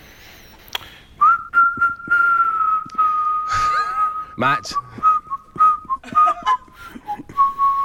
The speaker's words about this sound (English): we can hear you whistling.